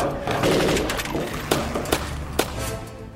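gunfire

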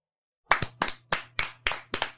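clapping hands

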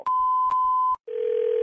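telephone dial tone

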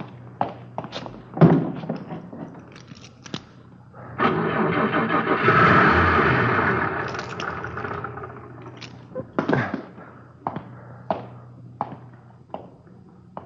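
car engine starting

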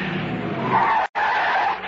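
car tires skidding

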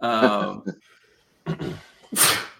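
sneeze

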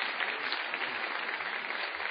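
audience round of applause

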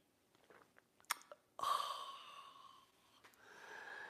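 sipping coffee

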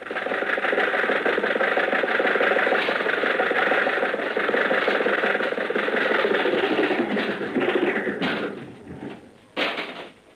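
car engine

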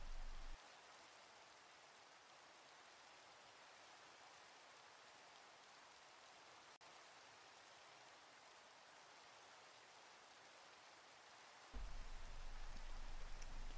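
rain falling

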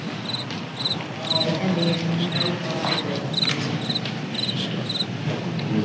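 crickets chirping sound effect

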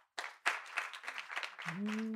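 audience applause

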